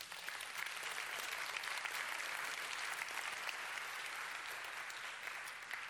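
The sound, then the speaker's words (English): An audience claps steadily for several seconds, a dense, even wash of many hands applauding at a consistent loudness with no voices standing out. “I won't clap yet.”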